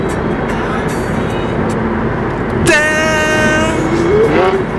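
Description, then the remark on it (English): A Tesla electric car passes amid steady road noise, and partway through a loud, high electric whine with layered tones cuts in and holds, rising slightly in pitch as it goes by. “What car is that? The Tesla.”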